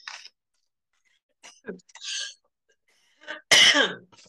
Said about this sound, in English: Apparently, I want to choke on my own spit.